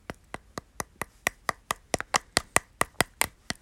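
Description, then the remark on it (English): A steady series of about sixteen light, crisp taps on the waxy top of a honeycomb, evenly spaced, with no talking. “Tap on the wax on top.”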